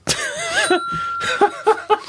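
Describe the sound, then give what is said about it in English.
A bell that is not made of bronze rings once, its bright, high tone hanging steadily for over a second while short, rhythmic chuckling bursts and voice-like sounds come and go around it. “That was not a bronze bell, by the way.”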